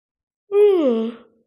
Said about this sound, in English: Excuse me. Yawn again.